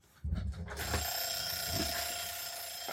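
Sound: kitchen timer alarm ringing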